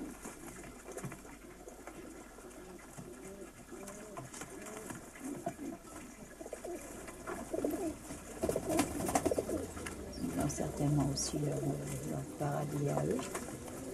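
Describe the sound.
A dying pigeon in a box at a woman's feet in a cemetery coos softly and repeatedly, its low throaty calls mixed with faint shuffling and rustling, while people talk quietly in the background.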